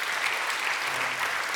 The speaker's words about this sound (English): Amen. Amen. Give Ruth another round of applause.